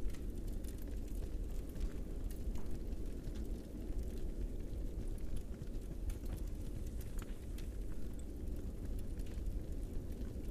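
A firepit in a cave crackles and pops steadily over a deep, constant low roar, with scattered sharp snaps throughout and no voices.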